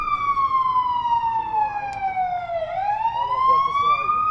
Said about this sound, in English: That's the second fire truck in 5 minutes.